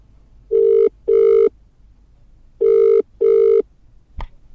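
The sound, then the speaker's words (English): A telephone ringback tone on an outgoing call to the Federal Bureau of Termination, placed through a voice assistant: two pairs of steady, mid-pitched double rings separated by a pause, loud and clear with no voices, ending in a brief click as the line connects. “Would you like to call the Federal Bureau of Termination? Yes. Connecting.”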